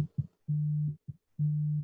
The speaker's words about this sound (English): One of y'all phones is ringing. That is mine.